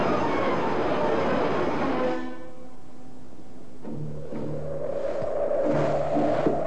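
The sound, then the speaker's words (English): A passenger train rumbles loudly along the rails for a couple of seconds, then steady horn-like tones sound as the clatter eases, with no voices present. “Jim Hudson took his package on the train with him on Monday morning.”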